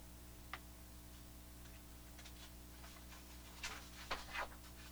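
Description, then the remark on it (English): Paper pages of a ranked list of cities being turned: a single soft flick early on, then a short cluster of crisp rustles and slaps near the end, over a steady low hum, with no talking. “Turning the pages some more.”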